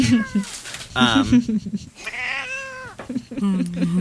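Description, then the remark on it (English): A female cat meows repeatedly, a series of drawn-out, wavering cries, one long whining meow in the middle, followed by shorter chirpy calls. “Squish that cat!”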